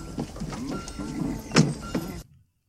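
A cowboy in an outhouse: creaky wooden groans and strained, voice-like grunts, with a sharp knock near the middle, for about two seconds before cutting to silence.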